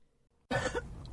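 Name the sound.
cough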